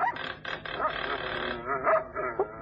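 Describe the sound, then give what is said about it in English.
Several dogs belonging to an old woman bark in overlapping bursts after her kitchen doorbell is rung, a steady clamor of yaps and barks at moderate loudness with no pause. “Say, how many dogs has the old girl got?”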